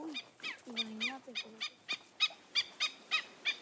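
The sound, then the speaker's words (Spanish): Snowy plover calls: a steady series of about a dozen short, high, clear chirps, distinct, with a few lower whistled notes mixed in near the start. No talking. “Otros pájaros que dependen de las salinas son los cholitejos de nieve.”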